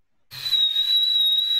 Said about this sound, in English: But you're woken to the sound of a whistle.